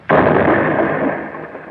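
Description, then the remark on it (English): A single loud, sudden blast of an explosive charge blowing a safe door clean off erupts with a sharp onset, then a dense, roaring rumble that slowly fades over more than a second. “The door's blown clean off.”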